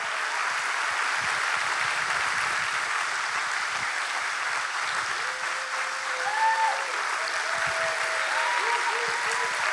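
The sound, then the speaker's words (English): A church audience applauds steadily for the whole stretch to welcome a visiting pastor and his companion as they come forward, a dense, even wash of many hands clapping, with a few faint whistles or tonal cheers rising briefly toward the end. “Clap for the two of them as they come.”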